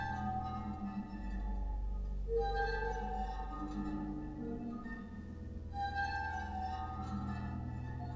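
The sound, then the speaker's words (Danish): A pipe organ sounds a steady series of sustained chords with bright, ringing, harp-like tones, shifting harmony every couple of seconds over a deep low drone, with no talking. “Så der er også, man kan få sådan nogle lidt harpeagtige lyde frem her.”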